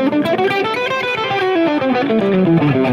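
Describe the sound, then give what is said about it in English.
A distorted electric guitar plays a quick run of individually picked notes, moving up and down in a steady rhythm at a loud, even level with no voices. “So you might work on picking everything.”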